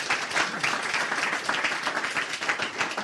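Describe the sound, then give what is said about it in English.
A crowd applauds steadily, many hands clapping in a dense, continuous patter that stays fairly even in loudness across the whole stretch, with no talking over it. “Give him a clap.”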